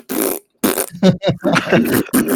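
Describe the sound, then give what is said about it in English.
Loud, buzzy fart sound effects, triggered from shortcut keys on a computer keyboard, fire off one after another: a short blast, a brief pause, then a rapid string of sputtering bursts, clear with no talking. “Wait, so you've got something binded to every key on your keyboard? Are they all farts?”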